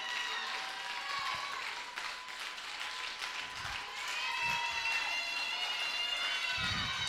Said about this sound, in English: Come on, Facebook, clap.